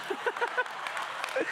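A brief burst of audience clapping, marking the preacher's 4 years and 40 sermons wearing the same outfit, a dense patter of many hands at moderate loudness, with a few voices calling out over it.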